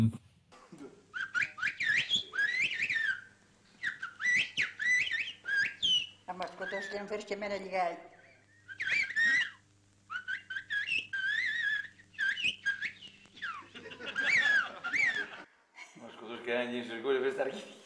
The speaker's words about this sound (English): So this gives you an example of like what a conversation can sound like in a whistled language, and you can hear these complex utterances that this really is the language.